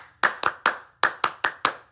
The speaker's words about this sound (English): Ew, everybody was clapping.